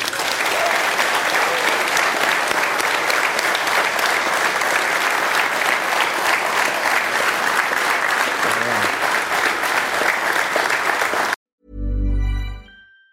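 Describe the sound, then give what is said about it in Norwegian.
Sustained audience applause at Unions scene for a man credited with detective work, a dense steady wash of many hands clapping for about eleven seconds, then it cuts off abruptly and a brief low burst of sound follows. “men nå, en stor takk til alle som dukket opp, og en stor applaus til mannen som har stått for tidenes detektivarbeide”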